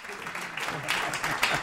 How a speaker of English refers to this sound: So how is it to walk out to applause and not be, you know, kind of playing the guy with getting the applause on?